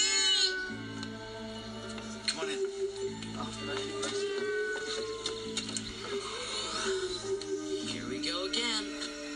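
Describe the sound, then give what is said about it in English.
A baby's cry that blends into a cat-like meow, wavering high above a steady droning, mechanical-sounding background that runs the whole time. “And what's really fun is when the baby cries, it's half a cry, half a meow.”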